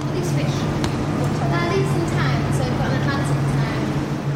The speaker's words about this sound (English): So I can give you a slightly less swish example. Here's a bit of audio from Sea Life in London with a lot of background noise.